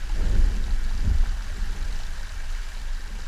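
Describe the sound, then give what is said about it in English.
Underwater recording of melting glacier ice in the Arctic or Antarctic: a dense, steady fizzing and crackling like countless tiny bubbles popping, with two deeper muffled rumbles near the start. No voices. “So what we can hear under the water in the Arctic or Antarctic is essentially a sound of melting glaciers and ice caps.”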